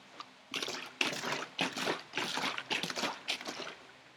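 A bottle of lemonade is shaken hard, the sloshing coming in quick repeated bursts for a few seconds with no talking over it.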